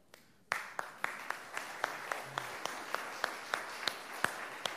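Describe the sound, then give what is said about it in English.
Modest applause from an audience recognizing its teachers, most of whom are standing, begins abruptly and holds steady: a soft, dense patter of many hands, with individual sharper claps standing out at a fairly regular pace throughout. “The reason the applause were not terribly loud, it was most of you who were standing up.”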